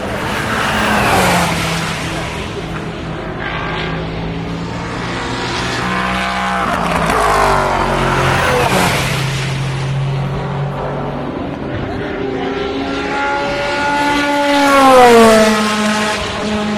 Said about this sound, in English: The sound of the Toyota, it sounds great.